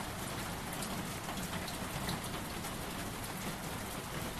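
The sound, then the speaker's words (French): Steady, dense rainfall hisses without pause, fairly loud, with a faint low rumble of thunder beneath. No voices are heard. “Nous sommes assis, la pluie, le tonnerre et moi, jusqu'à ce que seulement la pluie, le tonnerre demeure.”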